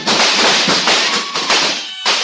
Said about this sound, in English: When I saw the long, vicious revolvers come up at me out of their coats, I didn't hesitate. I slid under the table fast and started shooting.